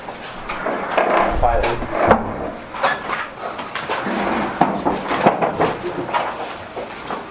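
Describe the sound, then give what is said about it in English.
A door shuts with a dull wooden thud about two seconds in, among rustling and handling noises, while muffled voices murmur. “Please close the door.”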